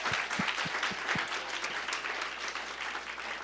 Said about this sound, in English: Come on, let's give another just round of applause.